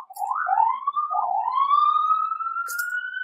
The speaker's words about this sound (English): It's another ambulance.